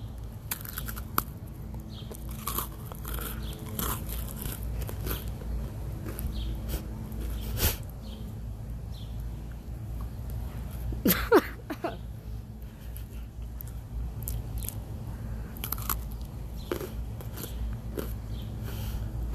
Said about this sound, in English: Mine is sound ASMR. Let's get started. Today, I'm eating double stuffed Oreos.